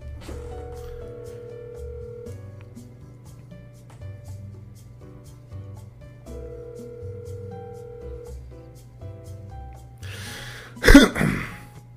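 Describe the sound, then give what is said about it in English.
A phone call rings out unanswered, a steady repeating tone pattern over a low hum, ending with a brief burst of noise as the line is cut off. “Half my fans don't even pick up their phone.”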